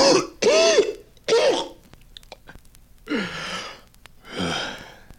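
A smoker's harsh, phlegmy coughing fit: five rough hacking bursts, the first three quick and close together, then two longer, raspier coughs after a pause, loud with no talking.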